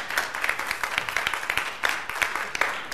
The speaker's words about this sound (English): He's all powerful, and you're supposed to applaud. Okay, don't, but there you go. You can applaud if you like.